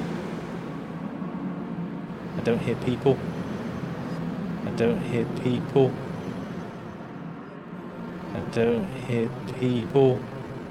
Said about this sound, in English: I don't hear people very much. It's the internal combustion engine.